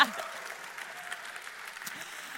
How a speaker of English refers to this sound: I'm going to have us do another round of applause for all of the volunteers that you saw up here corralling the children.